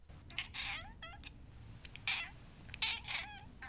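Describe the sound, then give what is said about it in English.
A cat, Bubbles, meows several times in a row, a string of high, plaintive, wavering cries with brief pauses between them. No one speaks. “Yes, you were wise to place her bed, her catnapping bed, near the radiator.”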